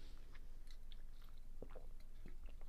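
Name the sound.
sipping water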